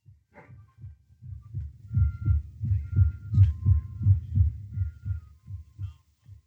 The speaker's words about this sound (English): I can't tell whether he's breathing or not. The old man's so skinny, so sick. Hear if his heart beats.